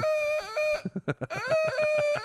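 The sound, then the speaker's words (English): A man loudly imitates a duck, drawing out nasal, honking calls at the start and end with a quick burst of choppy quacks in between, with no other sounds. “You're like duck-billed Tarzan all of a sudden.”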